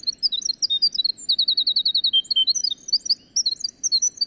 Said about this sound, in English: Winter Wren. Yeah, how would you do a mnemonic device for that?